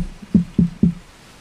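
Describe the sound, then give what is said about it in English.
Three quick, evenly spaced knocks on wood, dull and low-pitched, fairly loud, with no talking and quiet before and after. “Without catching the Rona, knock on wood.”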